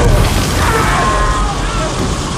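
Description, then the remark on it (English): A flamethrower's roaring blast engulfing an HQ bunker, a steady, loud wash of hissing, rushing noise over a deep rumble that holds for the whole stretch without pause, with faint voices buried in the din. “The hissing roar of a flamethrower blazes blinding orange, engulfing the HQ bunker.”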